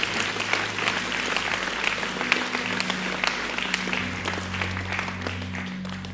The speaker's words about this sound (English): Look at the people that gave their lives to Jesus. Amen. Come on, can we give the Lord a hand clap in that? Amen.